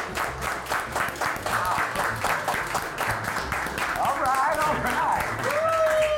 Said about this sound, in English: A very raucous slow clap. I have to be careful when we, you know, we're really packed tonight. I'm on the mic, and I'm a very loud clapper